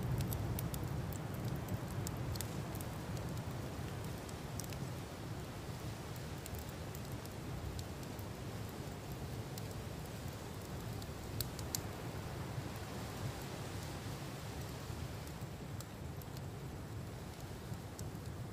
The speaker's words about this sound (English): Aside from a gentle breeze and the crackles of your little fire, there is very little noise.